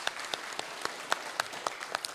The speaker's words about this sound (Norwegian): Klappe for han.